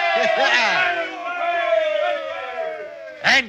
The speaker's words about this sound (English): Yes, we're saved. We're saved. Give a cheer, lads. We're saved.